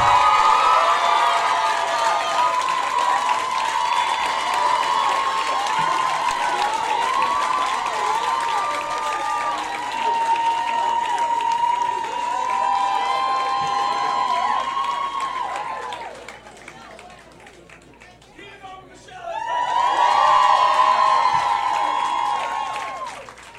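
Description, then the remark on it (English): An audience applauds and cheers loudly as special guest Michelle Wolf is introduced, with whoops and shouts riding over dense clapping; the noise dips briefly near the end, then swells again. “Give it up for Michelle Wolf, everybody!”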